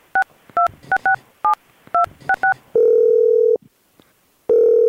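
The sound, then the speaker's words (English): A phone keypad beeps out about eight quick touch tones in an uneven rhythm as a call is dialed, then a steady ringing tone starts, pauses, and begins again. The tones are clear, with no voices. “yeah, call, do it.”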